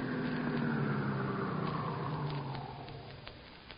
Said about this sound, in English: Shortly after midnight, the stolen car in which they had driven from Chicago pulled up in front of the spacious Victorian residence where their intended victim lived all alone.